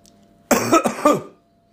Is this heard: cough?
yes